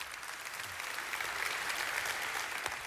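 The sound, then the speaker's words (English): Steady applause from an audience welcoming a guest up in the morning, a dense, even patter of many hands clapping at constant volume throughout, with no voices standing out. “Well, y'all welcome Brandon up here this morning.”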